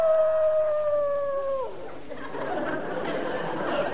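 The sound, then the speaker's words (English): A dog lets out one long, steady howl that slides downward in pitch as it fades, followed by a murmur of indistinct background chatter and noise. “Oh, taking her dog for a walk.”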